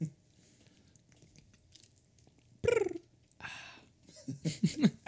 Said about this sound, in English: Did you hear that one? You hear me gulping it? You hear me gulping it? Boop, boop, boop. That's some high quality H2O.